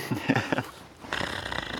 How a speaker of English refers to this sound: Can you just get audio of me snoring?